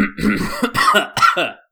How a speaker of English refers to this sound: before you start, actually, can you like clear your throat really, really loudly and go? All right. Can you do that?